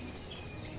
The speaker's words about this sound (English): I mean, I absolutely love robins. Just there's something in the bell-like crystalline clarity of their song. And also skylarks. Listening to skylarks was one of the things that kind of first inspired me to make music out of bird songs.